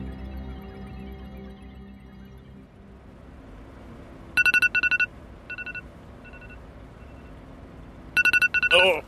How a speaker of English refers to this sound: Oh, what the hell? Sorry, I set an alarm on my phone. When did you do that? When the party started last night.